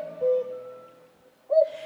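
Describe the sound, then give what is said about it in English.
A cuckoo bird call: two soft, hollow hooting notes separated by a short pause, clear and moderately loud with no voices. “Well, the name cuckoo is onomatopoeic, which means that the name of it, or the name that we call it, sounds like what its bird call sounds like.”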